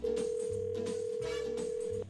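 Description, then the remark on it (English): A steady telephone ringback tone hums continuously for about two seconds, loud, with faint background murmur underneath before it cuts off, heard while placing a phone call to a woman. “but he's going to hang in the background while we call her up here and try to make this happen.”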